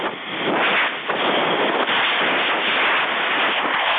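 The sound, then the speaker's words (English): A bigger storm coming ashore: a loud, steady roar of wind and rushing noise that swells and dips slightly over a few seconds, with no voices. “Oh, sounds like we got a bigger storm coming ashore.”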